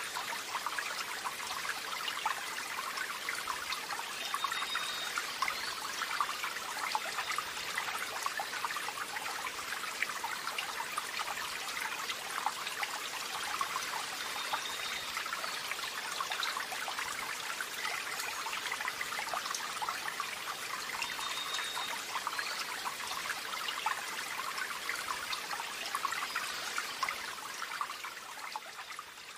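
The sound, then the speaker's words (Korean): A steady, bright rush of flowing water, like a small brook burbling continuously, with no voices and no breaks for the whole stretch. “알레그로 수아베, 경쾌하면서 상쾌한 시냇물 소리 들려오죠?”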